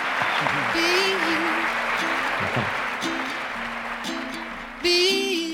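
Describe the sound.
Sustained crowd applause, a dense steady wash of clapping, with excited voices and cheers rising over it and a louder burst near the end.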